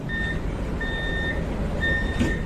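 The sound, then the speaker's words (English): A train pulls into Gare de Luxembourg station in Luxembourg during the morning rush hour, rumbling low and steady while a high electronic beep sounds three times at regular intervals, each tone held for about half a second. “A train pulls into Gare de Luxembourg during the morning rush hour, and dozens of commuters alight”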